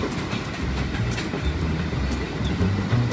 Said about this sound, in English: Oh, indeed, and so we went. Trains along the way from Moncton, New Brunswick, from Colombo to Galle, Sri Lanka, possibly somewhere in Thailand,